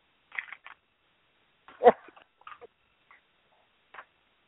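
Irregular hard clicks of a block hitting a TV: a quick cluster of taps, one louder knock, then a few scattered lighter clicks with pauses between, no voices.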